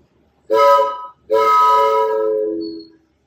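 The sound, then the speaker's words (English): Two loud, steady blasts from a larger, adult-version handheld train-horn noisemaker, a short one then a longer one, with a rich chord-like tone and no talking. “And I have my adult train.”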